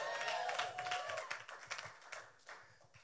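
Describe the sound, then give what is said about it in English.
An audience breaks into applause during a sermon, a dense, crackling wash of many hands clapping at once, holding steady for about three seconds before thinning slightly toward the end. “It doesn't make me preach any faster if you applaud louder right there.”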